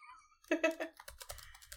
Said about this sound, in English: Make sure you get the typing noises.